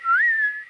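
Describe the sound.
A person whistles a brief two-note whistle, a low tone gliding up to a higher held note, clear, with no talking.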